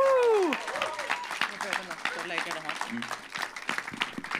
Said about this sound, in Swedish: En stor applåd.